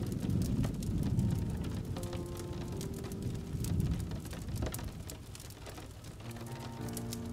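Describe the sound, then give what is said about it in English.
Steady rain patters on a surface while a low thunder rumbles and swells underneath, rattling a window, with faint tonal hums drifting in and out of the background. “You can hear a slight rumble of thunder in the air as it rattles the window in front of you.”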